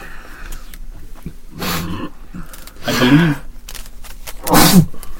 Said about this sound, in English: Bless you.